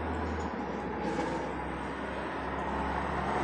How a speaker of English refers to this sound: And I'm just relaxing and just listening to these sounds. Like, here comes a bus coming by.